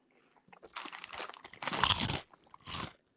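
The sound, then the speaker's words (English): Loud crunching of Crunch Spicy Ranch chips being bitten and chewed, with several bursts of crisp crackling over a few seconds and no talking. “Take your ears off because I got to show people the crunch.”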